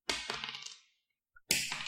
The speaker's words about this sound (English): I have dice out, and thanks to my echo chamber, I might actually be able to get some solid dice sounds. Oh, you know I love dice sounds. I do. Okay, so roll me, grab 2d6. Okay. Roll me 2d6 six times.